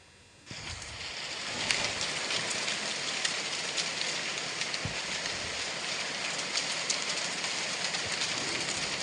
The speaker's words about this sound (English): That sounds like a stream or a brook. Fire. It sounds like running water almost. Yeah, I almost thought it was rain, but it wasn't raining that day. No, it wasn't raining. Not water, anyway. That was leaves.